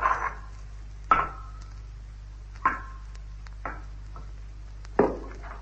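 A loose rock fragment, dislodged from just inside the edge of a circular pit, drops into it, striking with five sharp, hollow knocks at uneven intervals before its final hit into water below, each impact ringing briefly over a low, steady hum.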